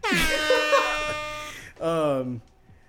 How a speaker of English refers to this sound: Some air horns for them.